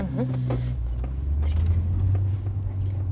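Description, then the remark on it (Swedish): A car engine hums steadily, a low rumble that swells slightly midway as the vehicle moves slowly past in a parking area, one of many cars arriving looking for a parking space, with faint voices murmuring underneath. “Och av att det kommer bilar hela tiden som vill kanske se kanske i våra plats.”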